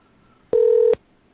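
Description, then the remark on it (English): A single steady electronic telephone tone sounds for under half a second, clear, starting and stopping abruptly against near silence, with no voices, as a phone call is placed. “The person you have dialed can't take your call now.”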